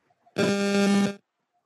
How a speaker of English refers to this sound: Was that a bee? I just heard like a buzz, and it sounded like a bee.